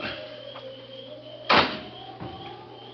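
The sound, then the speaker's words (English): A single loud car door slams shut midway, a sharp thud over a steady low hum, followed by a fainter knock shortly after. “They sat there in the car perhaps 10 minutes before the car door slammed shut.”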